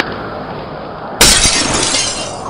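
Glass in a house window is broken and pushed out into the yard with a sudden loud crash at about one second, followed by a bright, sustained shower of shattering shards over steady background noise.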